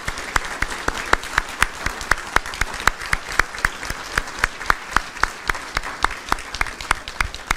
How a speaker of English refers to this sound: So if you're a family member of a graduate, would you please stand? And graduates, give them a round of applause, would you?